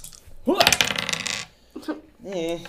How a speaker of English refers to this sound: All right, so roll your dice.